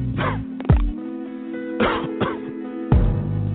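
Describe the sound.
A person coughs several times in short, rough bursts spaced a second or so apart, fairly loud, with no talking in between.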